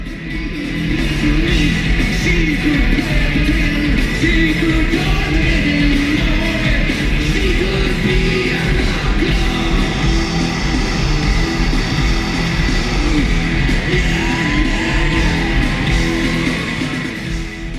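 A singer lets out a raw, primal scream over a loud, dense live rock band, the wailing voice straining above pounding drums and distorted guitars throughout.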